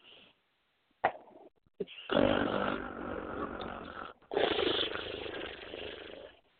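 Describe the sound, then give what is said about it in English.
A person performs two long, rasping snores live as a sound effect, loud, each a drawn-out rattling breath following closely on the other with a brief pause between them and a couple of small clicks before. “And yes, people, that was a live snore.”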